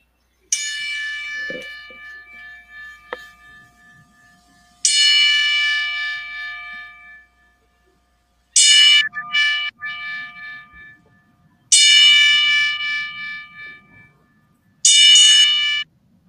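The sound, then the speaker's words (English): A bell tolls ten times as a salute of respect, played from a phone, in a slow, measured series of loud strikes, each clear metallic ring decaying before the next, with quiet pauses between and no voices. “pay respect to Ginger Perez with our 10 bell salute”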